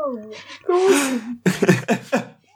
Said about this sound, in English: Oh, fuck. Bless you. Sorry.